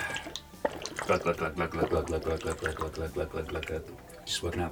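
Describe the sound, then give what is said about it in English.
Gulping as someone drinks water from a water bottle, with a quick, steady run of swallows and faint liquid sloshing between them. “I just need to have a drink real quick.”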